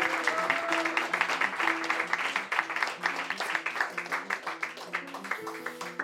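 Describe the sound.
An audience claps steadily for about six seconds, a dense crackle of many hands with a brief loose rhythm near the end, while voices murmur and call out beneath it.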